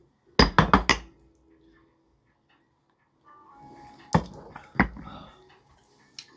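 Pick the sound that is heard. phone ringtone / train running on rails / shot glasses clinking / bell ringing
shot glasses clinking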